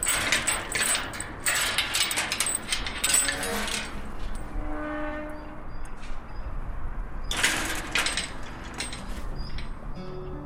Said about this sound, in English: The creaking of the gate announces their arrival. It's a chilly Saturday afternoon in late February, and these are some of the people who have worked to transform a piece of Dublin 8 into a living, growing space.